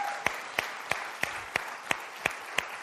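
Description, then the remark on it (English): An audience applauds, with a steady bed of scattered clapping and sharp, evenly spaced beats, about three per second, as if some people clap together in rhythm. No one speaks. “If we're going to clap, let's go ahead and do it.”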